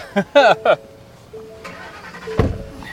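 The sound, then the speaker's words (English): A large truck engine cranks and turns over with a sudden loud burst near the end, following a few short tonal squeaks and a low steady hum. “The truck's so big, you got to have a running board to get in.”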